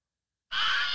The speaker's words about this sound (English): A man getting bit by an alligator and he screams.